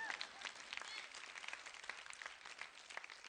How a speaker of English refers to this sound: And if I could get some women to clap, I'd stop right about now.